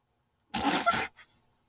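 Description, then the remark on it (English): A short, loud burst of harsh, crackling noise, like a microphone distorting and crunching for about half a second, followed by a faint brief rustle and then silence. “Your mic is getting crunchy.”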